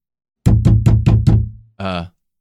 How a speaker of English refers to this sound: did you just hear that? Was that a knock at the bunker door? I think that was a knock at the bunker door.